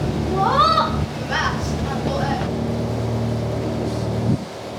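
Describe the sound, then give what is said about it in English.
A passenger boat's engine hums steadily in a low, droning rumble on a lake as the boat nears the pier at Bowness, with faint, indistinct voices rising over it near the start before the drone settles. “Good afternoon, we will shortly be arriving at the pier of Bowness, where this boat will form the 335 sailing to Appleside.”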